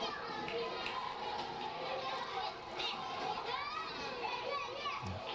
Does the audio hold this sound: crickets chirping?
no